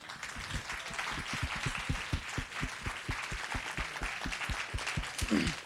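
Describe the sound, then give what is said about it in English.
A crowd of women clapping and applauding one another, a dense steady patter of many hands with a fairly even rhythm, sustained and moderately loud throughout, with no one speaking. “And women of God, I want you to applaud and clap one another.”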